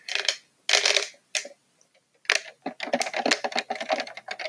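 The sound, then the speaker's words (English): Ice cubes clink and rattle in a cup of water, with a few sharp bursts and pauses at first, then a denser run of quick, bright knocks. No one speaks. “Okay, now to break up a little bit of the sounds, I have a cup of water.”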